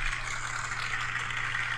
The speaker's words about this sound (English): It's bubble wrap, but okay. Bubble wrap. That was applause. The sound effect thing says applause.